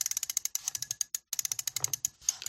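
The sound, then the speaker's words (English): A wireless phone charger's rotating base is spun around, giving a rapid, ratchet-like train of crisp, evenly spaced clicks, pausing briefly midway before clicking on again. No voices are heard. “Number two, it spins around. Listen to it click.”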